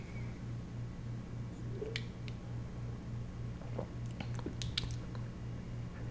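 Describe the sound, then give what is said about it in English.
Wet gulping sounds from someone drinking beer, with a few clicky, squishy swallows clustered near the end over a steady low hum; no one speaks. “Such a dramatic gulp.”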